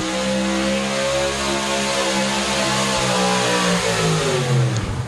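Heavy truck and tractor engines roar loudly and continuously at a truck and tractor pull, revving with strong low harmonics that rise and dip before winding down near the end.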